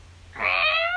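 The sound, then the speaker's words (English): A person imitates the pet Preshy walking around meowing at everybody for pets, with a single drawn-out, whiny meow that starts abruptly after a brief quiet moment and holds loud until the end. “Preshy walking around meowing everybody for pets?”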